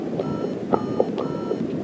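Thin electronic telephone tones from a test call to the BT line test facility, recorded with an induction coil through a landline telephone, over a steady hiss of line noise, with a held mid-pitched beep and a few short clicks and blips scattered across the two seconds.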